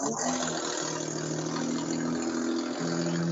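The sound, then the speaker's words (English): A car with a bad muffler drives past, its loud, rough, blatting exhaust rumbling steadily for the whole stretch, with no speech over it. “Nope, just a guy that apparently needs a new muffler.”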